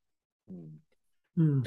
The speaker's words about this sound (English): Excuse me. Sorry. No worries. I got to clear my throat.